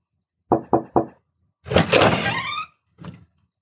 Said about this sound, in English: After a couple of faint knocks, the door opened